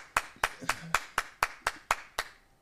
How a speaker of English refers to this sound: Round of applause for Peyton not wearing all black.